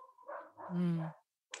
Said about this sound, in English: So it's interesting, the dogs are going crazy outside again.